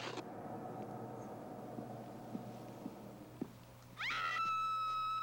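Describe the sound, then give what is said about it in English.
A woman in a film lets out a loud, piercing scream, dubbed in afterwards, that rises sharply and holds at a high pitch, breaking in suddenly over a low, steady background rumble near the end. “This is a good scream.”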